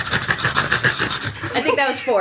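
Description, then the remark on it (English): Three people vocally imitate the noise of Cerberus, a tiny three-headed pug, together: a rhythmic, breathy huffing of quick repeated pulses for about two seconds, ending in higher, wavering whiny tones. “Three-headed pug. All right, so we need three people to do the noise.”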